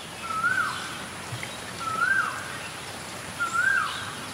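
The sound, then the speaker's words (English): A male Asian koel, in its October mating season, calls three times at steady intervals from a tree in front of a home, looking for a mate. Each call is a rising, whistled note, heard over the constant hiss of falling rain. “It's October, which is the start of their mating season, and this male call keeps coming to a tree in front of my home to find a mate.”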